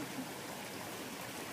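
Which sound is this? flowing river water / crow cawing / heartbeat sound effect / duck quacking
flowing river water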